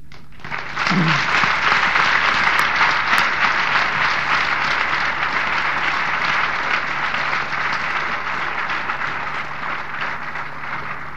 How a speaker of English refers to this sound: You can clap again in a minute.